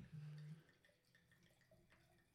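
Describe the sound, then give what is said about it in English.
Wine is poured from a bottle into a glass: a brief low glug, then a soft trickling splash that rises in pitch as the glass fills. “Oh, that's a good pour.”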